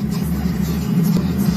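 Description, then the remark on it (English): Dash cam video audio: a car engine hums steadily with a low, continuous drone, rising slightly as the car speeds up toward an 18-wheeler with a car wedged underneath it, loud with road noise underneath. “And he's coming up on it real quick, and it does show an 18-wheeler, and it shows a car, underneath the 18-wheeler.”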